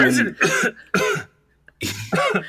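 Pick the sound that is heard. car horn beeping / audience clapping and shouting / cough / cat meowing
cough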